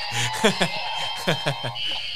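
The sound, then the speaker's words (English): Several trivia buzzers pressed at once go off together in a dense, overlapping drone, with a few sharper bleeping bursts popping out on top before the tones keep ringing steadily to the end. “Now we got to compete with just like if everybody pushes their buzzer at the same time, what it sounds like.”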